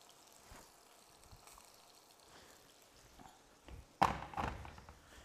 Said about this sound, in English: So now I'm going to prepare the gravy. So, gravy granules. And then very, very simple. There's nothing really to it. Just add a bit of boiling water.